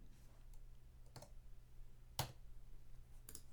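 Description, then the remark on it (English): A few sharp, isolated clicks spaced irregularly over a low, steady hum, with one louder click in the middle; quiet, with no talking. “How's all this clicking sound, huh?”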